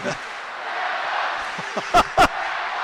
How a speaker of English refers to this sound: Cork lead by 2. Listen to the crowd now